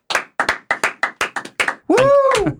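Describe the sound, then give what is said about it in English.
Two people clap to welcome a guest in a quick, uneven burst of about nine sharp claps, followed by a short rising-and-falling vocal whoop of a cheer. “Yes, that is two people clapping, but it sounded like more.”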